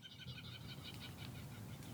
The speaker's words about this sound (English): They're coming for us. Birds.